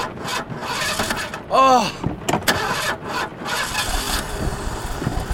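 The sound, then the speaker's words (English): A car engine at Ghost Ranch cranks repeatedly with a whining, grinding starter and sputtering bursts that never catch into a steady idle, fairly loud, with some background clatter. “I just hope the engine starts so we can get out of here.”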